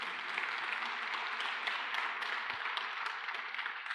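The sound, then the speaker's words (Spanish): A church audience applauds the Lord steadily, many hands clapping together in a dense, continuous wash with scattered sharper claps poking through, holding an even loudness throughout with no voices heard. “¿Pueden darle un aplauso al Señor?”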